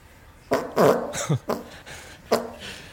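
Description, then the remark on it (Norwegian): A series of loud, sputtering farts in short bursts, some with a buzzy low tone, over a faint steady hiss of a toilet cistern refilling with water. “og så sluppet fis, mens cisterna ble fylt opp”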